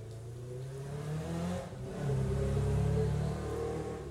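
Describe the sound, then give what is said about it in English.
A motorcycle engine revs with a steady, throaty drone that dips briefly and then surges louder midway through, holding a strong rumbling pitch until the end. No one speaks. “Featuring motorcycle.”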